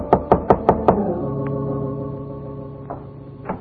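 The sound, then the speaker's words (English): Five quick, evenly spaced knocks rap loudly on the door of a bungalow in a bungalow court on Normandy, followed by a low, sustained musical chord that lingers and slowly fades with no one speaking. “It was a bungalow court on Normandy, and it took her a long time to answer the door.”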